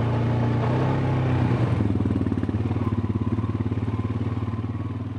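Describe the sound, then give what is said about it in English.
A small four-wheel all-terrain vehicle engine revs up, its pitch rising sharply, then settles into a steady, throbbing putter with a fast rhythmic pulse, as the driver sets off with a passenger hopping on behind. “Sarah revs up her four-wheel all-terrain vehicle, and I hop on behind”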